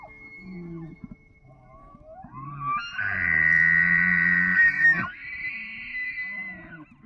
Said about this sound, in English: While visiting a national park, you may recognize the squeaky hinge, out-of-tune violin sound of a bugling elk.